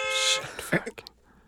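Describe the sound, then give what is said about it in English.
A single loud, nasal old-fashioned car horn honk sound effect sounds briefly, followed by a few short, clipped vocal noises. “I mean, that reminds me a bit I have about honking. But if you're gonna do the effect, do it like learn to do it once.”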